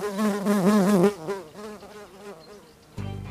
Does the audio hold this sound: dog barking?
no